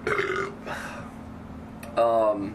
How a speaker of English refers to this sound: Well, you know, you hear my burp. That's gross.